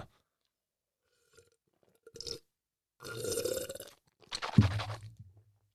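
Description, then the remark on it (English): Water being sipped and swallowed: a short slurp, a longer noisy sip, then a gulp ending in a low throaty rumble, all fairly quiet with silence between and no talking. “Some water is coming, and it's going to be very loud.”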